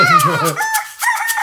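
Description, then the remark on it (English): A single drawn-out rooster crow, loud, rising and then trailing off in a wavering, strained tone, most likely a human voice imitating the call. “Oh, dude, the woke rooster gets excited.”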